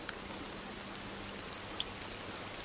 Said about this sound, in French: Tout à coup, l'attente cède. Le bruit de la pluie.